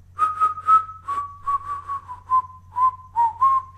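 A bird inside the room whistles a steady, mid-pitched note that slowly dips in pitch over a few seconds, broken by rhythmic bursts of raspy chatter, with a low hum underneath and no talking.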